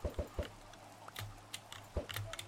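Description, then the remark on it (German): Video game chickens cluck in short, quick bursts, a fast triple at first and then a few scattered clucks, fairly quiet with a faint background hum and no talking. “Denn wir brauchen diese Hühner.”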